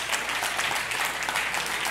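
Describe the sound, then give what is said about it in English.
An audience claps steadily, a dense wash of many hands applauding at a fairly even volume throughout, with no clear pauses and a faint murmur of voices underneath. “it's all right to clap your hands.”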